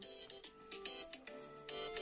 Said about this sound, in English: I'm sorry. You want to shut off that phone, Dick Morris? Yeah, I just did.